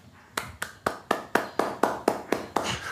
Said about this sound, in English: I get a clap? Oh, thank you.